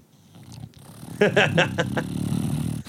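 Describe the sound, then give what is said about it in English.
A female bulldog makes attention-seeking noises, a quick run of four high, whiny vocal bursts over a steady low grumbling rumble, fairly loud. “And she's just desperate for attention, and she's making a bunch of noise.”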